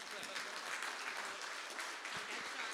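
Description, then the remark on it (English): An audience applauds at a service, with many hands clapping in a dense, steady wash of sound that holds at an even level from start to finish, fairly loud. “This is where you applause to cover this.”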